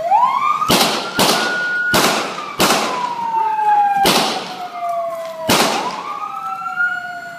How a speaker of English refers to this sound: Here's the audio of those few seconds, including the 6 gunshots.